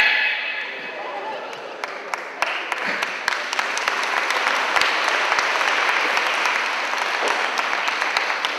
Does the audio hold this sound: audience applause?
yes